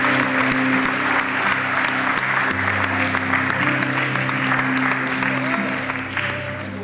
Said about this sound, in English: Come on, give the Lord a big round of applause.